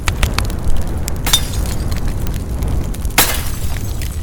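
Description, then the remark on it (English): Clay pots smash on the ground one after another in the late morning, two loud crashes with scattered clattering fragments and a low rumbling background between them. No one speaks. “Crash! Fragments fly through the air as one clay pot after another hit the ground, the sound shattering the stillness of the late morning.”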